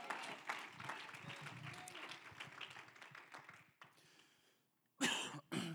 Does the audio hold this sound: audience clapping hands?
yes